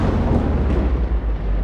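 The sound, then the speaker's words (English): A loud thunder sound effect: a heavy, continuous rolling rumble with deep low-end weight and a broad crackling wash on top, sustained throughout without any voices. “Cue convenient thunder and lightning.”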